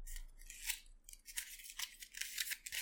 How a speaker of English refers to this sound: I guess technically didn't say to shuffle, but I saw a bunch of those cards, so I'm shuffling it.